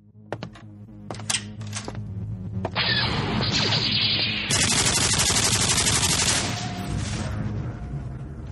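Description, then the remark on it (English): A video game double-barreled nuclear plasma cannon fires in a rapid, rattling barrage, starting with a few sharp clicks and building into a loud, dense, sustained blast of electronic gunfire, with no voices. “Well, I just conquered the outer rim planet of Pico Pond with my trusty double-barreled nuclear plasma cannon. Well, I just did in this video game.”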